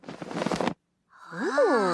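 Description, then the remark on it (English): A loud, breathy gasp lasting under a second, then a brief silence, followed by a wavering voiced 'ooh' that swoops up and down in pitch, clear. “Oh, your gasps are appropriate because I have perfectly predicted the future.”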